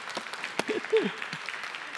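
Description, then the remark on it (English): Light, weak applause from an audience: a steady patter of scattered claps with no strong peaks, and a brief murmur of voices rising through the middle. “That's a very weak applause. I think I'll wait for a better one because we want to give it to Jesus.”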